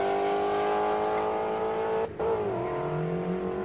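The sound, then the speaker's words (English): A loud supercharged stick-shift drag car with a 100 millimeter pulley, driven by Eric Vega, holds a high, buzzing rev on a two-step, cuts out for an instant as the clutch is dumped at launch, then drops in pitch and starts climbing again as it pulls hard away. “That car with a 100 millimeter pulley is a 9 second stick shift car. And I love that he leaves on a two step and straight dumps the clutch.”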